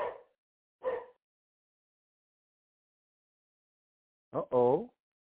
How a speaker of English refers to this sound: Your dog is getting a little huff in his voice, huh?